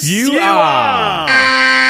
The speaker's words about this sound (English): What the hell is that? Oh, …, you know what that alarm means. What is it? That alarm means we have a mystery dumber-than-me contestant.